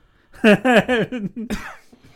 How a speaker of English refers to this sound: You were the one that was going to cough